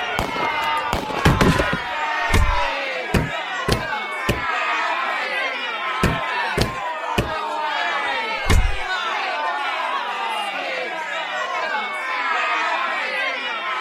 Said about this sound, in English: and as you announce your finding, fights break out in the courtroom. A few shots are fired at the ceiling, and splinters of wood rain down on the crowd.